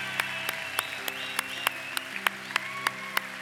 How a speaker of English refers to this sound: Come on, church. Let's give them a big hand. Come on.